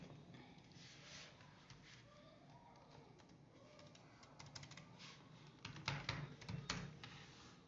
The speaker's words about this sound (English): Aggressive typing. Got it. Cool. I know how Google Docs works.